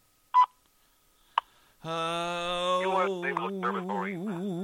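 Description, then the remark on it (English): A U.S. Naval Observatory Master Clock time signal: two short, sharp tone pips a second apart, then a long, loud, buzzy sustained tone that starts to waver and warble toward the end. “At the tone, Eastern Daylight Time.”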